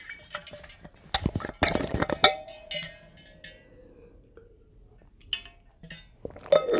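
Glass clinks and clatters sharply for a couple of seconds, then water pours steadily with a thin, sliding ringing tone, ending in a few more light knocks. No one speaks.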